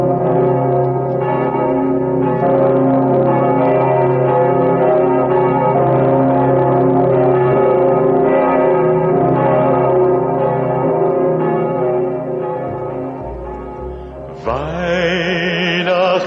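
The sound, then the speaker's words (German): The deep, resonant bells of St. Stephen's Cathedral in Vienna, including its largest bell, the Pummerin, toll together in a dense, sustained peal with layered ringing overtones, loud and continuous, fading slightly before a brighter tone cuts in near the end. “Symbol ehrfurchtsvoller Andacht ist das gewaltige Geläute des Wiener Stephansdomes. Tief dröhnt die größte Glocke, die Pummerin.”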